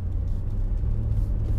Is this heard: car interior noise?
yes